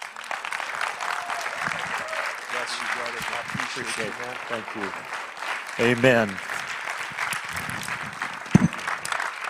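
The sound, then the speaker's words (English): Steady audience applause at a church service fills the whole stretch, a dense rattle of clapping hands while a man speaks brief thanks over it, his voice rising clearly above the clapping. “But I want you to give a good hand for Dr.”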